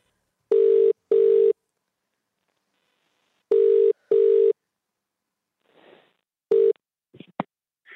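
A phone's ringback tone on an outgoing call sounds in paired bursts, two rings, a pause, then two more, clear and close, followed by a faint click as the line picks up.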